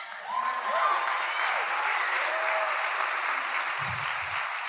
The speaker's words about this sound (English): I'll pass your applause along to Jesse. Thank you.